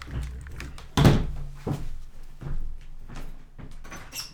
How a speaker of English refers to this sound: Why you banging on the door?